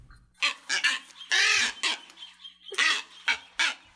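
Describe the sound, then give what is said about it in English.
Harsh, raspy calls of boobies, goose-sized tropical seabirds with long pointed bills, wings and tails, in Hawaii, ring out loud in a rapid series of short bursts, with one longer drawn-out squawk in the middle and no voices. “Boobies are a group of goose-sized tropical seabirds with long pointed bills, wings, and tails.”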